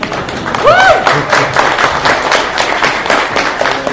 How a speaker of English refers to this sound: You guys can applaud. We're cool.